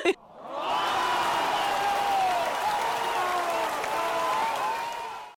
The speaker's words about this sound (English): You've been working your ass off. Yes. So round of applause.